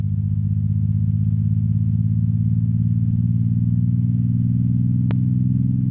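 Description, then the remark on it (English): Gravitational waves from two merging black holes, converted into sound by MIT professor Scott Hughes: a loud, low, buzzing drone with layered harmonics that holds steady, then edges upward in pitch near the end as the force of gravity grows stronger, marked by one sharp click. “MIT professor Scott Hughes converted the gravitational waves into sound. Rising pitch means the force of gravity is getting stronger.”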